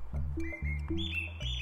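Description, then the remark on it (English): Birds sing from the trees in a string of thin, high whistled notes and short chirps, held briefly one after another over a steady low rumble of background noise. “Let's see if there's anything singing in the trees around here.”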